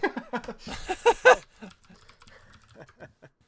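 Rapid, frantic keyboard typing with a dense burst of clacking keys early on, then lighter, scattered taps trailing off; a voice briefly sounds underneath.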